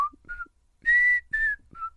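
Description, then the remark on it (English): A person whistles a TV show theme tune: a short, bright melody of several sustained notes, the middle two louder and held longest, with no talking. “Am I fucking whistling?”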